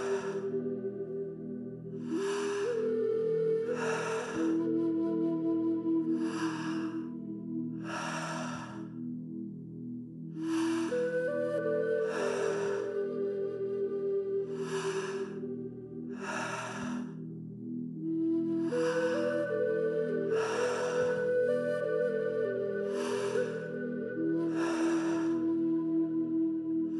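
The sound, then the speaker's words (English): Forceful rhythmic Tummo breathing, sharp inhales and exhales in a steady repeating pattern, loud, over a sustained droning musical tone. “Keeping your breath nice and even. Each inhale, a commitment to your practice. Each exhale, a surrendering and letting go.”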